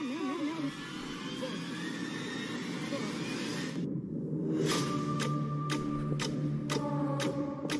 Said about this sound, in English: The ticking has made it so much worse for me.